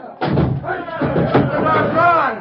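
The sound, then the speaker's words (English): Heavy, booming thuds strike a door a few times in quick succession, loud, while an angry mob shouts and clamors underneath, battering the door to get at a prisoner in a sheriff's cell. “Hey, Sheriff, that door's getting away.”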